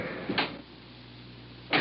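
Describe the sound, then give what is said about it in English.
A bag lands with a soft thump on the back seat of a car, then a car door shuts with a solid slam about a second and a half later, over a low steady background hum. “Now, I'll just put this bag in the back seat.”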